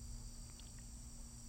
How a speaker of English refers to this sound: It's changed. It's now full of new flowers. Bees buzzing.